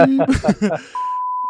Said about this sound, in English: I'm gonna blur that out. I'm gonna beep it out. Beep. Yeah.